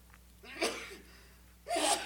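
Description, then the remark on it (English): A breathy sneeze: a short sharp burst, a brief pause, then a stronger and longer blast of air, with no talking around it. “Bless you.”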